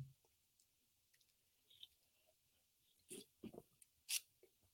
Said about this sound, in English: All right, guys, before we get out of here, we're going to take a sip of the beer.